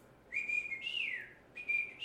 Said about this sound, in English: We just like whistle for each other.